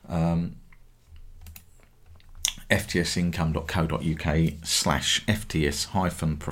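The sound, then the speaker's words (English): Soft, scattered clicks and taps of typing on a computer keyboard, fairly quiet, after a brief voice; then someone starts talking steadily over them. “That's why I'm clicking on the wrong one.”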